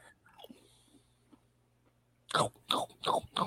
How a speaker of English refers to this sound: This crunching sound brought to you by Lay's Jalapeno. Cheddar jalapeno, the better combination.